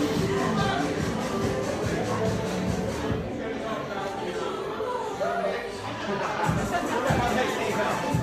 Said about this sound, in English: Let's head back over, see who else. The crowd just starting to come in right now.